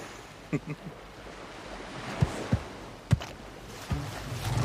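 A steady wash of open sea and wind, broken by several sharp slaps of water against the hull of a small boat, spaced irregularly.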